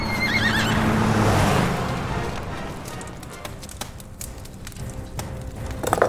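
A horse gives a loud, shrill whinny with a quavering, trembling pitch, then settles into scattered hoof clatter and rustling noise. No one speaks.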